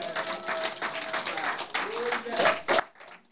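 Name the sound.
audience clapping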